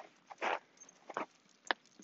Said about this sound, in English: And there's a dog well behaved in the garage, not coming out. Oh, he's starting to come out.